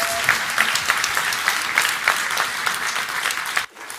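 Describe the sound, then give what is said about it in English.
Many people applauding steadily, a dense wash of many hands clapping at once, fairly loud, cutting off abruptly near the end. “Again, nobody ever claps for me.”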